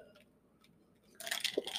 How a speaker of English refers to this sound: Excuse me, sip of tea.